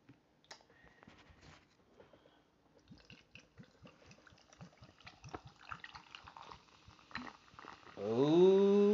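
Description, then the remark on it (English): Carrot, ginger and blood orange kombucha glugs into a Pilsner glass filled with ice in a quick, steady run of gurgles and faint clinks, ending in a louder pour whose pitch climbs as the glass fills. “So, got me my Pilsner glass filled with ice. Let's open this bad boy up.”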